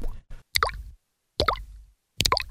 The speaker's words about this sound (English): There's a sound like dripping water, which if you were in a studio or the recording studio and like you... Yeah, there you go. I think you would take... You know, you listen back to it and you'd be like, okay, that has to go. But they left it in.